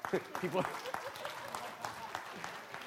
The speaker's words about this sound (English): This is CWC. If you're going to clap, clap like you mean it this morning.